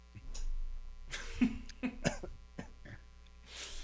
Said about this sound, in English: Sorry, I can't stop coughing.